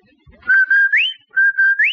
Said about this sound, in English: That whistle. That's a Rinso White whistle.